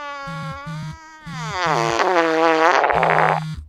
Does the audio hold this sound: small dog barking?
no